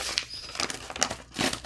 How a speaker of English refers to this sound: All right, what I'm going to do is put a little bit of glue stick on the back just because I think it's going to help glue the whole thing down.